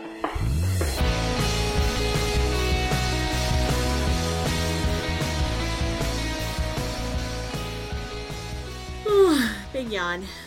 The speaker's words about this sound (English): Big yawn.